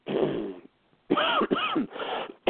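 A series of loud, harsh coughs into a microphone, about four raspy bursts with short pauses between them and a longer gap after the first, with no talking.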